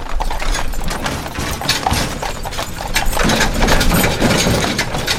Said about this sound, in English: But if I'd done that, I wouldn't have been on Joint Base Meyer-Henderson Hall when they hitched up the horses and the first caissons of the morning rolled out.